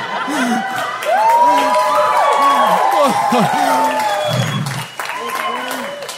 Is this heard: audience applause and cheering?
yes